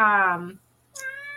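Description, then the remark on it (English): A male cat, White, lets out two insistent meows, the first long and drawn out, the second higher and shorter after a brief pause, heard clearly with no talking. “My cat's over here talking too this morning.”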